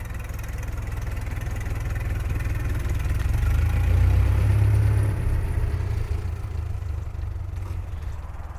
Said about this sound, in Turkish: Heyecanım içinde kıpır kıpırken bir önceki gün beni alan tip 630 model arabaya bindim.